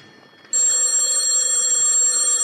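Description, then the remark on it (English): After a brief near-silent moment, a telephone bell bursts into loud, continuous ringing, a bright metallic jangle that holds steady without pause until the end; it is the phone in Lieutenant Clover's office. “Telephone's ringing”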